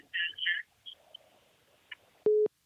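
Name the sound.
phone busy tone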